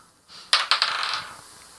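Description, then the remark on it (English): Dice clatter onto a hard table, a few quick sharp clicks and bounces followed by a short rattling roll that fades out, fairly loud with no one talking. “Is that the green dice? Because you're only supposed to be using the green one.”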